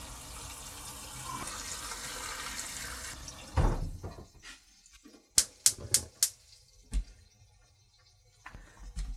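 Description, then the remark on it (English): A tap runs steadily, filling a pot with water for making stock, for about three seconds, then shuts off, followed by a quick series of sharp metallic clinks and knocks. No one speaks. “And now I'm just going to fill it with water.”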